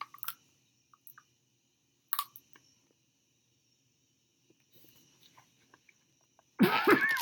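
A loud cough bursts out near the end after a mostly quiet stretch with a faint steady high hum and a couple of brief sharp noises earlier on.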